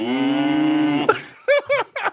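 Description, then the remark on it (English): A person's voice imitates a cow with one long, steady, droning moo lasting about a second, then three short, rising-and-falling vocal bursts. “No, it sounds like cow.”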